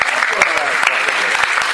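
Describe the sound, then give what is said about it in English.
A crowd claps steadily at a Comic-Con panel on comics lettering as Richard Starkings is called to the stage, the dense patter of many hands at a loud, even level, with a few cheers and voices mixed in. “You can give me a round of applause.”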